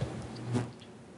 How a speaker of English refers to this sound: And I'm going to take another sip of water real fast.